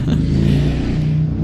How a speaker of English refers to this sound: another motorbike.